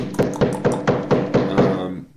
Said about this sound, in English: Okay. Knock on the door.